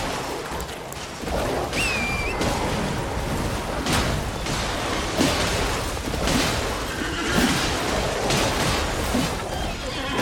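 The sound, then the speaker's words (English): A horse whinnies in a video game amid a dense, noisy game soundscape, with rumbling impacts and crashes layered throughout; the neigh is fairly clear against constant loud background sound. “Why did my horse go away?”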